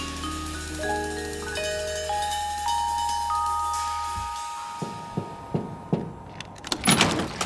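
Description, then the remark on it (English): A steady humming drone with shifting tones fades out, then a series of about six sharp, loud knocks on a door lands at an uneven, insistent pace, with no talking. “You want to be out there playing with all them hoes and you keep your ass out there, but stop knocking on my goddamn door.”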